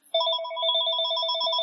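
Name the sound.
phone ringing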